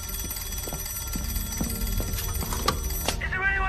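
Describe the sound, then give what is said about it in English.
A ship's telephone bell rings insistently as the lookout rings the bridge after sighting an iceberg, a rapid run of sharp metallic strikes at moderate volume over a steady rumbling background, with no clear speech. “He's ringing the bridge.”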